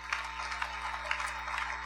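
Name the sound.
audience clapping hands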